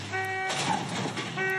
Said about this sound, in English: The scene near Northwest 4th Street and 3rd Avenue. Everybody was coming out of the balconies because they were hearing all the alarms and the sudden crashing back and forth of this drunk driver